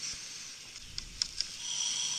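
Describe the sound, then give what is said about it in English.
A turtle hissing: a steady, breathy hiss runs throughout, broken by three quick sharp clicks in the middle, then swells slightly louder toward the end. No voices. “Oh, there's the hiss.”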